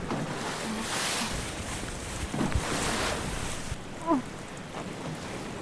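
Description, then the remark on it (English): Water sloshes and washes steadily around a boat, with occasional hollow knocks against the hull and a gusty wind rushing across the microphone. No one speaks. “I can hear the boat thumping and the water washing around it.”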